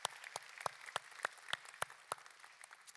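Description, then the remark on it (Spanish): A church audience applauding together, with a steady rhythmic clap standing out over a dense wash of scattered hand claps, moderately quiet, with no voices. “Así que damos gracias a Dios por esto que ha sucedido en nuestra iglesia, y definitivamente esto merece un aplauso.”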